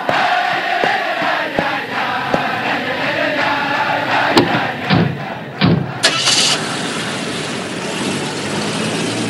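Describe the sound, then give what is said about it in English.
A large, jubilant crowd of Hasidim sings and cheers loudly and continuously, with scattered shouts and claps, as the Rebbe's car pulls away, its engine rumbling underneath the noise. “As the Rebbe's car is pulling away, the crowd was ecstatic and jubilant.”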